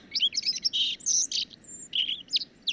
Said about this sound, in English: It's not quite as grandiose as the spring chorus, but you'll start to hear bird songs.